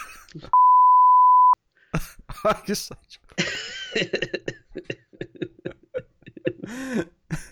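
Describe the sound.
A steady, pure electronic censorship bleep of about one second, loud and alone, masks a swear word at the start, followed by voices talking with coughing, throat clearing and a groan.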